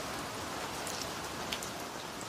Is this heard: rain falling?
yes